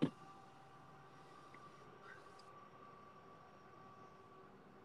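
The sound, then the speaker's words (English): A voice imitates a distant train, producing a steady, low rumbling drone with faint humming tones that holds evenly and quietly for about five seconds after a brief click at the start. “let's give … a second to really let his train impression shine”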